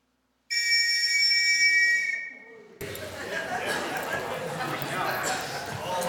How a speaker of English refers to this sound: That's a loud whistle, isn't it? That is a Second World War air raid patrol whistle from Liverpool. Now, you lived in Liverpool in the early 40s, and you heard that whistle go, you would know what to do.